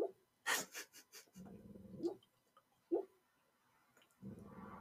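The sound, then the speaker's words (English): A sleeping dog named Garmin, dreaming, lets out a few muffled, soft woofs and whimpering noises in short irregular bursts, quiet, with breathy pauses between them and no talking. “I don't know what he's dreaming about, but he's dreaming.”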